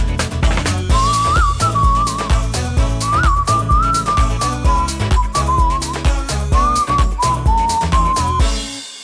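A bright whistled melody wanders through a lively tune over upbeat backing music with a steady beat and bass, playing loudly for about eight seconds before stopping abruptly. No one speaks.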